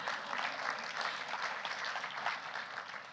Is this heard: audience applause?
yes